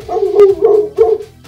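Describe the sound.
A human voice mimics a dog, giving three quick woofing barks in a steady rhythm, fairly loud, with a sharp click partway through the first one.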